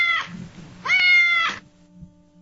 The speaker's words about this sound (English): Beating him by 3 points, my cat, Tycho Tyrone.